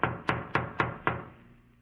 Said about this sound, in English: I better knock again.